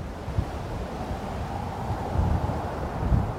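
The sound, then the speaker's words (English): Ambience layer from the video game Fallout 4: steady, low wind rumbles with a soft rustling texture, swelling slightly in gusts toward the end. No voices, just a continuous airy bed of noise. “These are typically sounds like rain, wind, forest rustling, room tone, or anything that establishes the environment.”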